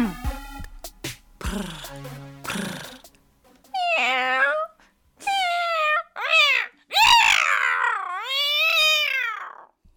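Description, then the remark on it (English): A voice imitates a cat, starting with rough, rattling purr-like sounds, then a run of about five drawn-out, wavering meows, loud, one after another with brief gaps. “There's a cat party. I quite enjoyed the purrs, actually.”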